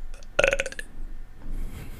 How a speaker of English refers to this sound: Excuse me. Is that fucking dumbass burp?